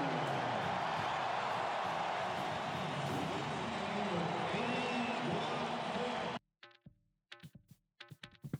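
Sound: basketball arena crowd cheering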